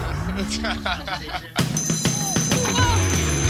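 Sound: hand bell ringing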